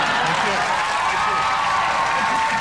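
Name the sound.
audience applause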